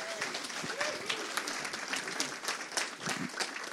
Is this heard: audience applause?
yes